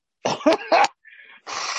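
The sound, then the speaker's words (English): A few quick, throaty coughs or sobbing gasps, a brief sniff, then a steady, breathy rush of air as someone blows their nose. No one speaks. “Sorry, I keep wiping my eyes and blowing my nose.”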